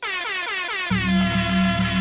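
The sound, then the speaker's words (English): A loud, warbling air horn sound effect blares continuously, its pitch wobbling up and down, with a low droning blast kicking in halfway through and sustaining to the end. “Get your foghorns out.”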